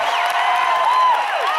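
A large concert crowd cheers continuously on a Sunday night, a dense wash of voices with scattered whoops and shouts rising above it, loud and sustained throughout.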